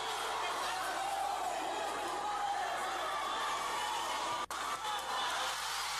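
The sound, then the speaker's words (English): A crowd watching a fight between two politicians roars and cheers in a steady, dense wall of noise, with mixed shouting voices throughout and one brief sharp dip partway through. “The crowd goes wild.”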